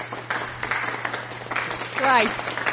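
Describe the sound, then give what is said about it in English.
Slow, soft hand claps in an unhurried rhythm, a quiet golf clap, with a voice briefly vocalizing over them near the end and a low steady hum underneath. “Although I would like to give a golf clap to Charlotte for saying Asian.”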